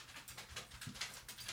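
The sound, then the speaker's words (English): A dog approaches: quick, light pattering steps with faint jingling, repeating in a steady rhythm. Fairly quiet, with no one talking. “Here comes the dog.”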